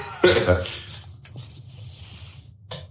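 A sharp, hissy spray burst is followed by a breathy sniff that trails off into soft airy rustling, with a brief second puff near the end. No one speaks.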